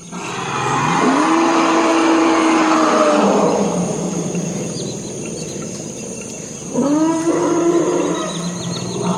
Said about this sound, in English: That's from the Congo. Those are forest elephants. This is about 3 o'clock in the morning. These particular recordings reflect a very unique kind of soundscape. There are very few places in the world where an elephant would go to this kind of wetland